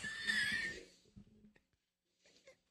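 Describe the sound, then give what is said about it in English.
A horse whinnies in one loud, shrill, wavering burst lasting about a second, followed by faint breathy snorts and soft scattered noises, played back from a video on a laptop. “That's just a guy getting fucked by a horse.”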